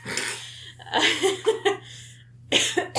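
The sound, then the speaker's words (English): A fit of coughing: a short hack, then a cluster of three or four rapid harsh coughs, a brief pause, and two more bursts, with no talking. “Oh no, you're coughing.”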